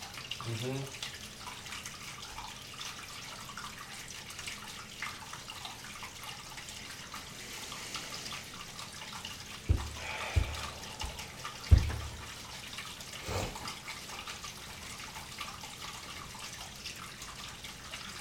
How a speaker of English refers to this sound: Yes. Running water.